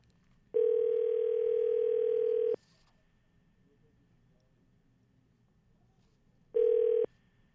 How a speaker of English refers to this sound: Oh, here, are we going to hear the ringing